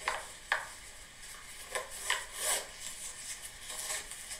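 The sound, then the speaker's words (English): Shoelaces being tied and pulled tight, recorded with the microphone very close: a run of soft, scratchy rubbing swishes, a few sharp short ones and some longer drawn-out pulls, fairly quiet with no voices. “It's someone tying their shoes.”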